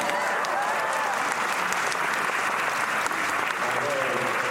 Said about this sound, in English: You guys clap. Thank you.